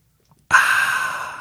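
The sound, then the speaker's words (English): A single sip of a drink, an airy slurping draw that starts abruptly after a moment of silence and holds steady for about a second. “I have my tasty drink, which I'm going to sip right now.”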